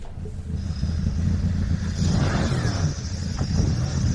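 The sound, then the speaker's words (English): Three sports cars, two of them De Tomaso Panteras, drive past with a deep, steady engine rumble that swells louder midway, a passing roar with a faint high whine at the start, outdoors, with no talking. “They are three of my most favourite cars, those three. Panteras. Well, two of them are Panteras.”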